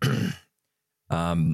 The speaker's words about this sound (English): Sorry, what was the cough for?